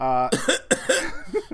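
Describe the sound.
A person coughs several times in quick, ragged succession, close to the microphone, after a short voiced groan at the start.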